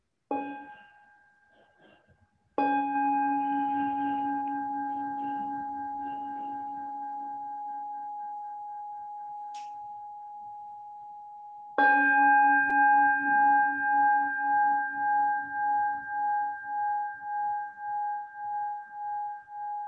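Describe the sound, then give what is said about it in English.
A bell is struck three times, first a short ring and then two long, resonant tones that hum and slowly fade, the last one with a gently pulsing, wavering shimmer. “I think I've got a bell here.”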